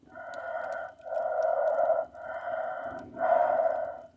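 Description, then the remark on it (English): Four long, heavy breaths in steady succession, muffled and narrow, coming through a walkie-talkie speaker as the reply to a radio call, with a faint hiss of static underneath. No one speaks. “A deep static comes as a reply. Heavy breathing can be heard on the other side of the radio.”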